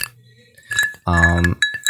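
A few light clinks of glasses touching in a toast, leaving a thin ringing tone, with a voice speaking briefly between the taps.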